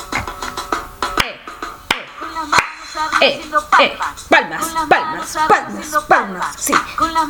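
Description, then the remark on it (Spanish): Sharp hand claps, made with hands raised overhead, ring out at a loose, steady pace and fairly loud, while a voice sings or talks melodically over them throughout. “Con las manos arriba haciendo palmas.”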